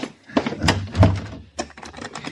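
A door thuds shut with a heavy knock, followed by a few quick metallic clicks and rattles as it is locked. No one speaks.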